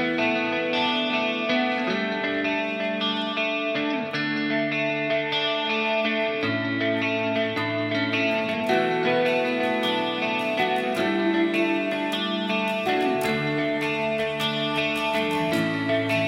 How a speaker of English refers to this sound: Up next, we have another song on this Rock and Reverb Nation.